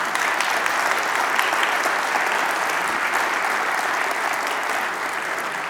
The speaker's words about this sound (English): Can we give a round of applause to these kids?